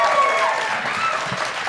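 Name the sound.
audience applause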